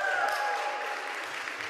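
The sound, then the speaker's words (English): A crowd breaks into rousing applause, a dense, steady wash of clapping that holds at an even, fairly loud level throughout, with a brief high whistle-like tone at the start. “So, regarding what you heard from the other person by a rousing applause or something, is what you heard from them, did it sound like good news?”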